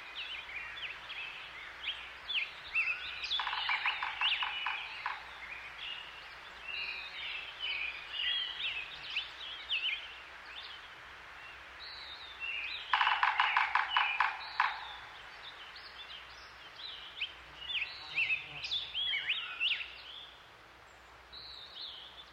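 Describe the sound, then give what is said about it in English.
Birds chirp and trill steadily in the high Sierra mountains of California as the snow melts, and twice a woodpecker's rapid drumming bursts out, each roll lasting a couple of seconds, with no voices present. “Before we go, one last trek into the mountains of California, where each year at this time, birdsong and the drumming of woodpeckers can be heard as the snow melts and summer heads up the high Sierras.”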